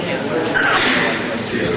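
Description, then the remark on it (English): A man gives a single sharp, breathy sneeze, a quick hiss of air over a steady background of indistinct voices and room noise. “Bless you, sir.”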